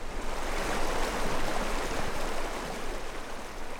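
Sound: flowing river water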